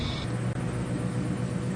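A steady electrical buzz from neon lights in Cairo, recorded by composer Mahmoud Rafat, a low droning hum layered with hissy static, holding at one constant level apart from a split-second dropout partway through.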